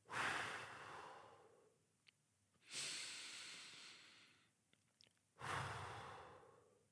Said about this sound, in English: It's literally just taking a moment to breathe in. Not just your normal breath, but maybe breathing in 3 seconds in and breathing out for 3 seconds.